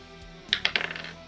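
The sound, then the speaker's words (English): A die clatters across a hard tabletop during a tabletop game, a quick run of sharp, bright clicks that bounce closer together and fade as it settles, landing on a natural 20. Fairly loud, with no voices. “Oh, it's a natural 20, though.”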